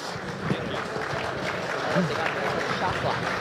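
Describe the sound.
Steady audience applause, a dense wash of many hands clapping at an even level for a few seconds, with faint murmuring voices mixed in underneath.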